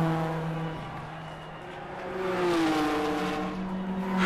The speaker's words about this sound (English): Welcome back, dear listeners, to the heart-pounding street race in Fairytaleton. The engines are roaring and our racers are ready to unleash their true potential.